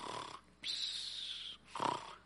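Relaxed snoring with no voices, presented as the happy snores of the biblical Boaz: a rough exhale, then a long whistling intake of breath, followed by another snuffling breath out.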